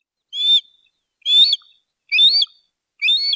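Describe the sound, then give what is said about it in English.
A hawk, a bird of prey, calls four times in a row, each cry a short, shrill, slightly rising screech, evenly spaced with brief silences between, clear with no talking. “People first noticed the hawk living near a bike path.”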